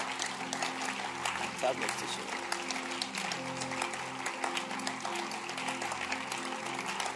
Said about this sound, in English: Clap your hands for the Lord. Clap your hands for the type of teaching you have heard tonight.